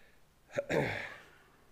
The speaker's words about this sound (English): Never fail to sneeze during the Bible reading. Oh, hay fever.